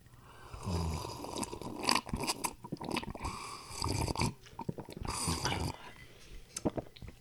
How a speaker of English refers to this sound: Let's slurp it and drink it simultaneously. Ready?